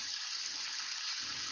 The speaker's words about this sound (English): Now I'm going to spray some cold water on everything here just to get the pasta to stop cooking. Kind of turn it off.